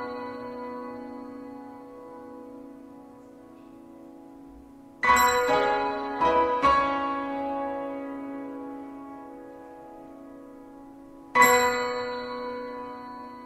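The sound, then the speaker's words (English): Bells ring out over a sustained orchestral chord at the final moment of a ballet score: a quick cluster of four loud strikes, then a single strike later, each tone ringing on and slowly decaying. “The final moment, just the bells at the end, also a very beautiful apotheosis.”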